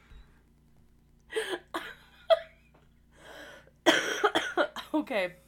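Close, harsh coughing in scattered bursts: a couple of short coughs, a pause, then a longer fit of rapid, breathy coughs with a laughing edge.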